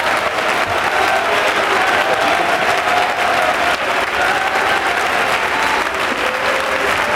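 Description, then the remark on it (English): An audience at a church service claps loudly and continuously for several seconds, a dense, steady wash of hands with scattered shouts and raised voices mixed into the noise, as the preacher urges them to clap and shout. “Oh, clap your hands and shout unto it.”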